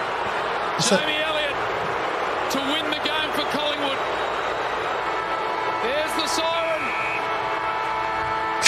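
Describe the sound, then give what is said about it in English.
A loud, roaring crowd fills the whole clip while a steady, sustained game-ending siren sounds through the noise as Jamie Elliott takes the deciding shot with the game on the line, with sharp bursts of cheering and commentary voices underneath. “If he does it, then the siren goes.”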